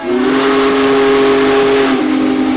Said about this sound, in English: I don't know what it is about that whistle. We hear whistles, we hear horns in our life, but the steam locomotive whistle is really something that just moves you.